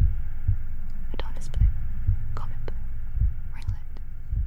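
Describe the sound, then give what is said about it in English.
Soft, low thumps of a slowed-down heartbeat, going from faster to slower, pulse at an unhurried pace while breathy, fluttering swishes of slowed-down butterfly wings flapping drift over them, all blended into a hushed, steady ambient bed. “And we blended together the sound of a slowed down heartbeat, so a heartbeat that goes from faster to slowing down, kind of to echo that soothing, mixing that with slowed down butterfly wings flapping.”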